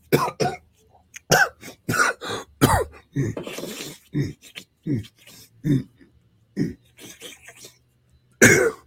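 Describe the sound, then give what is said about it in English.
A voice imitates repeated nose sniffing, mocking Ukraine's president: a long run of short, sharp, breathy bursts, fairly loud, coming in uneven quick clusters with brief pauses and no words. “Sure in the fuck ain't their Coca-Cola president, that friggin' sniff boy.”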